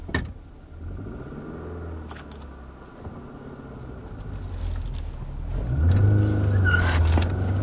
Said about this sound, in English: Got a little squeal there. This car, it's hit or miss, but it sometimes has some good power.